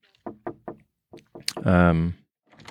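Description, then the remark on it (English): A voice imitates three quick, evenly spaced knocks on a door, clear, followed by a longer drawn-out vocal sound and a brief bit of talk. “Knock, knock, knock.”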